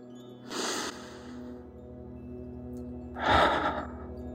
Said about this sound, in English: Take a deep breath with me.